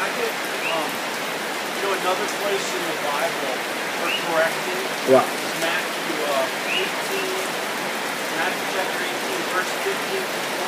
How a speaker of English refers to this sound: I guess it's good for the rain.